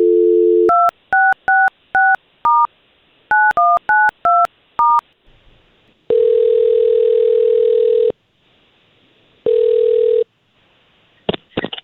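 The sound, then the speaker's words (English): A short dial tone, then a quick run of about eleven beeping touch-tone keypresses dialing a woman's phone number, followed by two long electronic ringing tones separated by a pause, ending with a click on the line. “Let's see if we can't call her now, and we'll talk to her first, okay?”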